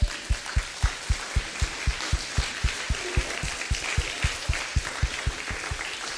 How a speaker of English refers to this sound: Keep your hand up. Let's give them a standing ovation. Stand up and let's clap for them. They set all this up today.